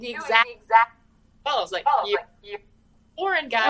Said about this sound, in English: Okay, wait. You're cutting out a little bit. Is it just me, you guys? Can you hear her clearly? Because it might be on my end.